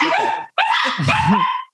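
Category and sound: animal, dogs barking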